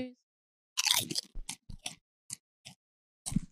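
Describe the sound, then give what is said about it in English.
Crunchy chewing, as of chips: a loud burst of crackling bites followed by sparser, irregular crunches with brief pauses between them, no talking. “This is kind of sickening me out, bro. I don't even want to finish chewing.”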